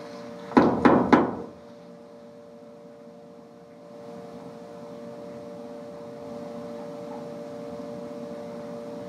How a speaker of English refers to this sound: So I'm going to knock on the wall here 3 times, and I would like for you to replicate it.